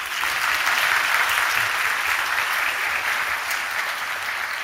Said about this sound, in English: Let's give him a clap.